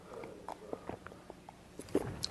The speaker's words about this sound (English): B'chaim, I'm going to have a sip of water here.